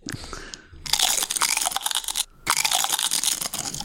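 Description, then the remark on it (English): Two loud bursts of crisp potato chip crunching, recorded crunch sounds mapped to a keyboard and played as musical notes, each a dense crackly crunch lasting over a second, separated by a brief pause, with no voices. “We have a full octave of chip crunches now.”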